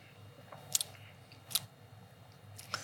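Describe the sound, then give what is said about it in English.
Sipping wine: a few short, wet mouth clicks and small slurping sounds spaced about a second apart, quiet against a low background hum, with no one talking. “So we're going to take a sip and see what this is.”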